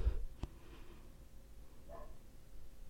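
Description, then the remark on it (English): A neighbor's dog barks faintly, a couple of short, muffled barks spaced apart over a low, steady background hum, with no one talking. “excuse me, it's the neighbor's dog again.”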